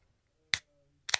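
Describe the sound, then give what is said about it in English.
A beer, a Wicked Sunset New England Blonde Ale, being opened: two sharp, bright bursts about half a second apart, each a quick crack with a short fizzy tail, over near silence with no talking. “I had major fears that when you did that, you were going to spray a beer all over the microphone.”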